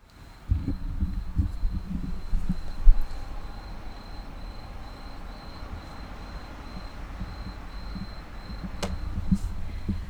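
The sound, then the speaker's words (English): Waves and forest sounds, not in Tokyo: a steady, low wash of waves rolls beneath a thin, pulsing insect drone, with a few brief bird chirps cutting through now and then. No one speaks. “Sound of waves. And birds and insects and forest.”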